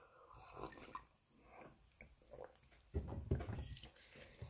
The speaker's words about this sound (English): I'm gonna have a sip of my Joe here. I'm entitled, right? I've been yapping for a while.